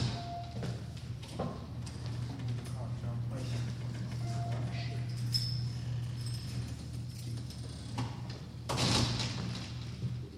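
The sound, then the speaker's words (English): A few dull knocks on a door, spread irregularly with a heavier cluster near the end, over a steady low electrical hum. “If you just give me 1 second here, someone is knocking on the door.”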